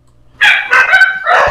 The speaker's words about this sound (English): So the alarm. And he wakes up the guard dogs.